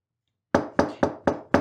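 Five firm knocks on a kitchen door in a quick, even rhythm, fairly loud, beginning after a brief silence with no voices.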